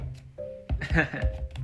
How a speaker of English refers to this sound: Narinig niyo ba yung juice? Tumainom kasi akong juice ngayon eh.